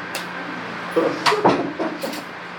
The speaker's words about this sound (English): You want to shut that door back there? They're wanting to get in that other class. They can't come in here.